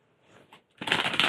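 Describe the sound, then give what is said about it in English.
Potato chips being crunched: a few faint rustles, then a sudden loud burst of dense, crackly crunching that fills the last half second. No one speaks. “I'm just going to crunch for a while.”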